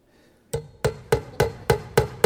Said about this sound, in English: Now, I remember as a young boy, as we built a back porch onto our property, I used to start hammering like this, literally.